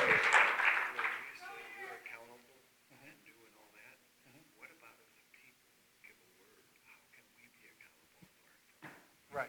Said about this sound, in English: Good job. You guys did it. Clap.